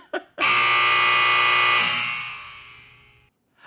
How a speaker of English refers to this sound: but I cannot save you from the buzzer. Man, the buzzer is hungry tonight.